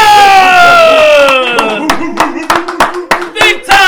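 Scattered hand claps from an audience welcoming a guest onto a show ring out in uneven, sharp bursts over a loud, sustained voice-like tone that slowly slides downward in pitch, with a faint murmur underneath.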